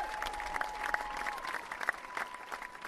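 A round of applause from a crowd, steady dense clapping with scattered sharper claps, fairly quiet, with a faint steady tone running beneath it.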